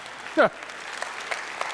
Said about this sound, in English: That was the teachers that started the applause.